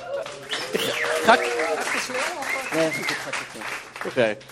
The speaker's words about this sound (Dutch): Geef een applaus.